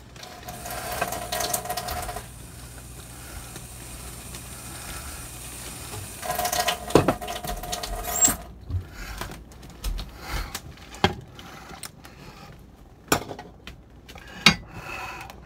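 A whisk scrapes and clatters rhythmically against a metal pan while whisking gravy, with a faint sizzle underneath; the steady strokes turn into sharper, uneven taps toward the end, with no one talking.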